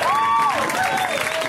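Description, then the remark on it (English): An audience claps and cheers for comedian Dan St. Germain at the end of his set in a dense, steady wash of applause, with a drawn-out whistle rising above the crowd noise throughout. “Cheer him on.”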